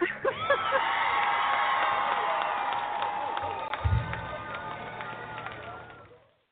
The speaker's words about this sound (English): I love the applause.